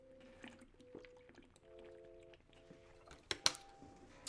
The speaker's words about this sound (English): Hold on, let me take a sip of my water real fast.